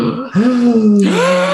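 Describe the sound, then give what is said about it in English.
Voices let out startled, voiced gasps, two sharp rising 'oh' sounds in quick succession that trail off, with no words spoken. “everyone just gasped because we don't usually do this on the show.”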